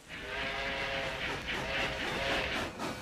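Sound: train running on rails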